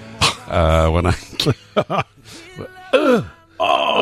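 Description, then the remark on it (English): A man voices a long, strained groan of getting up out of a chair, imitating the noise his father used to make when getting up, followed by a few shorter grunts and effortful moans, loud and unaccompanied by words. “That's the noise he used to make when he used to get up.”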